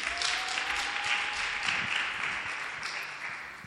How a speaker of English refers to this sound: I'm giving amnesty to all pastors. So, God bless you. Clap for your pastors.